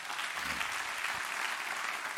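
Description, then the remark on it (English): A crowd applauds steadily, a dense wash of many hands clapping at once with no gaps, fairly loud, with no voices rising above it, applauding a young woman who has stood up to be recognized. “Give her a hand clap.”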